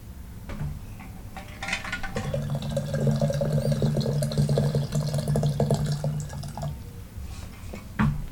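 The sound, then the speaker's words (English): A small amount of water pours steadily into an empty small gaiwan for tea, a continuous trickling stream with a ringing tone that lasts about five seconds, bracketed by a few soft ceramic clinks. “I'm going to take an empty guy one. Not much water, so it's not good.”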